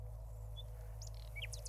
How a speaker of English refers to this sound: Oh, and how about some birds?